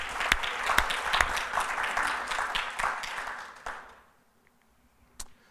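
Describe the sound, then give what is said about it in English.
A room full of people claps steadily in praise of the Lord God for giving them their leadership, a dense wash of hand clapping that holds strong for about four seconds, then fades out, leaving near silence with one last stray clap. “And I think that deserves a hand clap for Lord God for giving us the leadership.”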